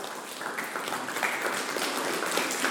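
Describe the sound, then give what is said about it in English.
An audience applauds steadily, a dense, even wash of many hands clapping at a moderate level throughout, with no voices standing out. “So give him a round of applause just for trying.”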